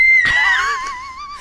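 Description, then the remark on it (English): A single loud, shrill scream from a girl who has just woken up, held for over a second with its pitch sliding gradually downward before trailing off. No one talks over it. “She just woke up and screamed at you all.”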